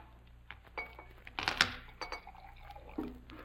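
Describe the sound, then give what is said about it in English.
Liquid is poured briefly into Mr. Holmes' empty glass by the waiter Pomfret, with a soft gurgle building around the middle, and a few light clinks of glassware before and after, quiet. “Pomfret, Mr. Holmes' glass is empty.”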